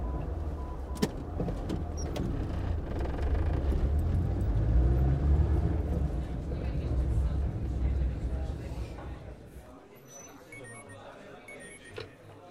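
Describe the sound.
A car engine turns over and rumbles steadily as the vehicle drives off, the low roar building and holding before fading away near the end. Faint voices can be heard underneath.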